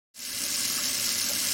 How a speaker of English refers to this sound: It's fucking cold water. There's only cold water coming out of this thing. I'm trying to wash the dishes.